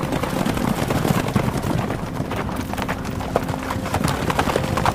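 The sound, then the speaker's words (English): Hooves of galloping racehorses pound in a fast, steady rhythm, loud, with dense overlapping hoofbeats and a rushing, windy background, as two horses run side by side down the home stretch of a race. “I can hear the footsteps of my horse, the footsteps of his horse.”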